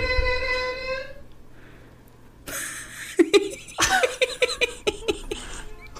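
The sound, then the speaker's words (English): Someone clears their throat noisily, a rough rasping burst followed by a string of short, choppy throaty grunts, just after a brief hummed tone. “Let me clear my throat.”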